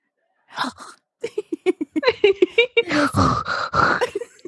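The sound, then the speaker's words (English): A voice imitates a woman's gasping, dying last breaths: a rapid series of short, strained huffs, then drawn-out raspy groans. The sounds are fairly loud, with no clear speech. “Between her gasping last breaths.”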